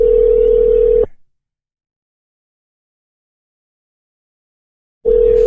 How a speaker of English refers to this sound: But let me see if I call his phone regular. Maybe it's the Wi-Fi fucking up.